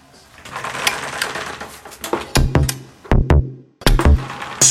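An instrumental song intro plays with no voices: a busy rhythmic patter gives way to sharp, loud accented hits over a low sustained tone, with brief pauses between bursts. It is the intro of the last song of the evening, by a round winner.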